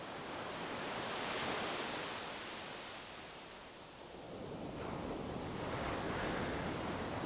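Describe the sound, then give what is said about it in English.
Steady surf at high tide washes onto a beach covered with yellow seafoam speckled with plastic shards, a broad hiss that swells, eases briefly in the middle, then builds again as another wave rolls in, with a little wind in the background. “I wandered down to a driftwood log, where the rolling waves coughed up more of this ocean mucus speckled with shards of plastic.”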